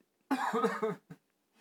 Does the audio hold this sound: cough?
yes